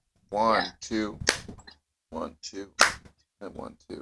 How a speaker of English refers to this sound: Your weak ass claps, Eugene. Is it really weak? What? No, it's fine. But it's like a, it was like a thud.